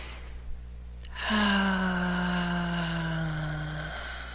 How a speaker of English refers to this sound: Another nice deep breath. Oh, how fun. I can hear some of you with your exhale another time.